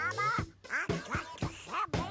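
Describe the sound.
A human voice imitates a duck in a novelty disco song, delivering a quick run of nasal, squawky quacking syllables in rhythmic bursts, loud, with a faint low musical backing underneath.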